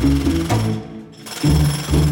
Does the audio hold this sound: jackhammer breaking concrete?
yes